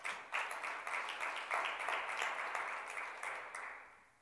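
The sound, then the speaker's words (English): An audience claps together as a clap offering to the Lord, in a dense, steady burst of applause that holds for several seconds, then gradually thins and fades out at the end. “Let's give the Lord a clap offering for that.”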